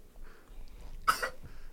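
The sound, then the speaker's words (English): A single harsh, forceful cough bursts out sharply after a moment of near silence, a quick double-pulsed hack that ends as abruptly as it starts, with faint room noise around it. “Boy, aggressive ass coughs.”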